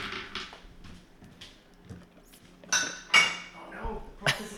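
Dishes and cutlery clink and clatter irregularly as someone rummages through cupboards, with several sharp, bright metallic chinks standing out among softer knocks and shuffling.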